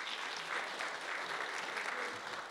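A crowd claps steadily in a sustained round of applause, a dense, even patter of many hands at moderate volume with no voices standing out.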